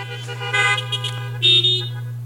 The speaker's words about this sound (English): Give me some honks out there.